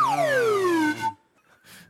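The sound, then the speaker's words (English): A whistle is blown in one loud, bright tone that slides steadily downward in pitch for about a second, then cuts off, leaving only faint scattered noise. “He was not ready for that whistle.”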